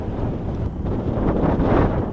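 Strong, blustery early-spring wind in West Tennessee buffets the microphone in a steady low roar, with gusts swelling and rumbling throughout and no voices present.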